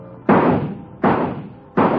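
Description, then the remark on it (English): Three sharp rifle shots at a carnival shooting gallery, fired at moving bird targets, evenly spaced about three quarters of a second apart, each a loud crack with a brief ringing decay, and no voices. “3 shots for 4. Knock the birdies down.”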